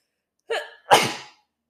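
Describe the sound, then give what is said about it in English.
A single loud sneeze: a short breathy intake followed by an explosive burst that fades out quickly, heard alone without any talking. “Oh my gosh, I just sneezed.”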